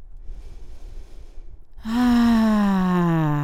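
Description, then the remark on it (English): During a yoga forward fold, a long, airy inhale is followed by a loud, voiced exhale that comes out as a deep, falling sigh, with no talking. “Massive inhales, massive exhales.”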